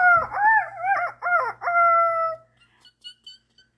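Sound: rooster crowing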